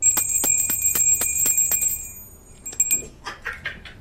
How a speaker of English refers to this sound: Some people don't like the bells.